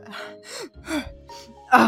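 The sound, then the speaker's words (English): A voice acts out the gasps of a female character revived with hit points as her eyes open: a series of sharp, breathy gasps, about five quick intakes of air in two seconds, with the final gasp the loudest and most strained. “Yeah, you pump the hit points into her and you see her kind of gasp and her eyes open and she's just...”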